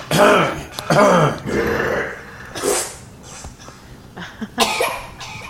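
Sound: coughing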